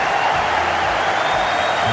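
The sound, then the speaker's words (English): A big cricket crowd roars and cheers at bowler Nathan Lyon in a steady, unbroken wash of noise for the whole two seconds, loud and dense with no single voice standing out. “Listen to the crowd getting into Nathan Lyon.”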